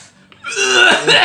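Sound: cough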